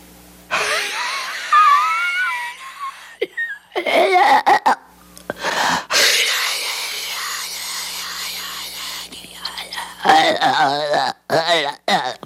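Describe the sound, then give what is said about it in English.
A voice imitates the devil's rasping, unearthly breathing as described by Blatty in the book: a string of loud, strained, gurgling wheezes and hoarse gasps, rising and falling in uneven bursts with brief pauses between them. “But Blatty says in the book it had an unearthly sound, the devil's breathing, that could be heard through the open door.”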